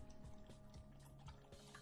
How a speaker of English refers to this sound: You can hear the pitter-patter of my dog. And the drinking of water. Let's get in close as the dog drinks water.